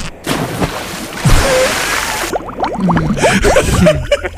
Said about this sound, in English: You see, when you pee under the water, it makes bubbles.